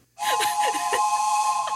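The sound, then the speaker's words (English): A steady, sustained train horn-style whistle tone, a sound effect made with audio gear and with reverb added, rings out layered over a hissy wash with a few quick falling chirps, holding loud and unbroken to the end. “Put some reverb on it.”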